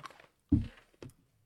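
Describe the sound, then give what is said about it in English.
A crisp crunch as a crunchy snack is bitten, followed a moment later by a second, smaller crunching burst of chewing, with no talking over it. “The most crunchy one, bro. I can hear that crunch.”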